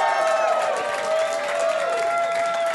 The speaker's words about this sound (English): Big round of applause for your buddy and mine.